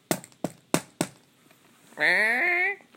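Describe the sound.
Four sharp, evenly spaced knocks on a neighbor's condo door ring out clear, followed after a short pause by a brief drawn-out voiced call from someone.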